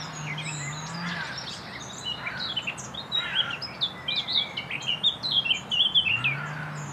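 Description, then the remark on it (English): A songbird known as the northern nightingale sings in a small scrubby thicket by a stile, with tall trees and a stream: a busy, scratchy run of high chirps and twittering phrases that grow denser and louder toward the end, with a low chainsaw drone rising briefly at the start and finish. “AKA the Northern Nightingale.”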